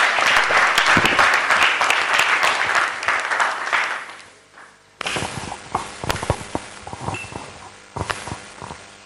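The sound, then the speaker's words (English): An audience claps in a dense, sustained round of applause welcoming the KFW program manager; it fades, then a thinner, scattered patter of individual claps continues at a lower level. “Please, let's welcome him with a round of applause.”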